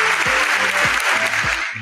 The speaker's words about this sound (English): So got to say, big kudos. I'm going to give them their applause, man. Good stuff.